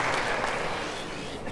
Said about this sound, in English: Can we give these guys a round of applause for having such courage? It takes courage.